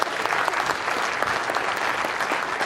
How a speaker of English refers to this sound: Well, go ahead and give God praise. You're going to clap, clap. Let's do it.